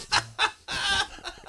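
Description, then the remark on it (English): A voice imitates a high-pitched shriek, replaying a reaction to a basketball putback tomahawk dunk: two short, sharp yelps, then a longer, loud, strained squeal that trails off into a few fainter squeaks, almost like a clucking bird. “Well, I shrieked like a girl when he did it.”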